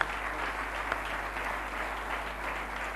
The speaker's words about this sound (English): Just once again, give the Lord a mighty clap of offering of praise.